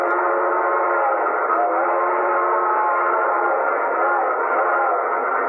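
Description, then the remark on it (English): A steam train whistle blows in one long, sustained, loud blast lasting several seconds, signalling a water stop three miles ahead a little after midnight, its steady chord-like tone holding without a break. “the train blew for a water stop 3 miles ahead.”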